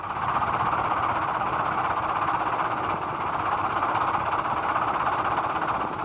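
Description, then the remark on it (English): A helicopter drones steadily for the whole stretch, a loud, unbroken mechanical roar with a rough, churning texture and no speech over it. “I want to know what chopper they're in. Got a distinctive sound to it.”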